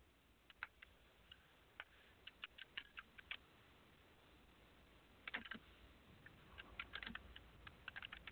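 Irregular bursts of keyboard typing, with sharp clicks scattered through the first few seconds, then a quick flurry of keystrokes after a short pause. Fairly quiet, with faint background hiss and no voices.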